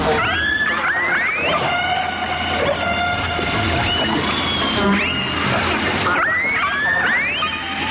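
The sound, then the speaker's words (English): Killer whales call in a steady stream of whistles and pulsed squeals, with sweeping rising and falling tones and buzzy harmonic calls, moderately loud over a constant hissing underwater background. No one speaks. “The sounds we're listening to are being made by killer whales.”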